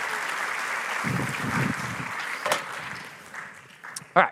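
Audience applause rings out as a dense, steady clatter of many clapping hands, holding at a moderate level before thinning, with a sharp louder clap near the end.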